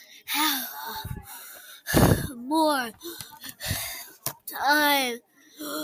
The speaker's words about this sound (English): I panted. 15 minutes, Mom said, out of breath.